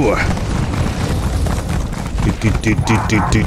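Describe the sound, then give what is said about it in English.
A dog barks loudly several times in quick succession near the end, sharp repeated yelps over a dense, noisy background. “Loud dog is being loud in the background.”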